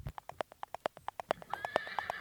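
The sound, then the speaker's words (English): Santa's reindeer gallop off, hooves beating out a quick, steady clip-clop, with a high, wavering whinny rising over the final second. No one speaks. “There he goes on his reindeer.”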